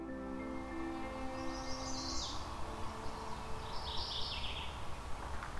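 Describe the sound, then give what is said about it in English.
A mourning warbler, just arrived in the Currie Tract, Halton region, sings two short, rolling phrases a couple of seconds apart over a steady low background hum. “So I'm hearing a mourning warbler just arrived at a particular part of, I believe it's the Currie Tract, Halton region.”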